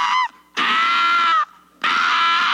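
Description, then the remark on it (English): A person vocally imitates the scream of a frog held in a snake's mouth: three loud, shrill, harmonic wails, the middle one longest, separated by brief pauses. “It's like a frog scream. I went out a while back and I heard this.”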